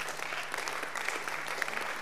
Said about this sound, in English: Oh, the way you are clapping.